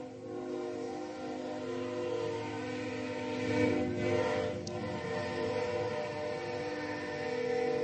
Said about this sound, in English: Train always comes at just the right time.